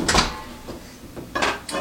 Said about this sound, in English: All right, so I'm gonna open up the microwave. It's been 2 minutes and the house is filled with that nice bacon on a Saturday or Sunday morning smell.